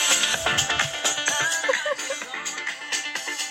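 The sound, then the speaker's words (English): A phone ringtone blares an upbeat dance-pop song, with a steady driving beat and bright synth melody, fairly loud, playing continuously with no one talking over it. “for George's, obviously, because George's phone is like the soundtrack.”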